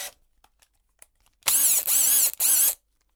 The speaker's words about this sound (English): Even bigger than that is the combi drill. Which is even more magical.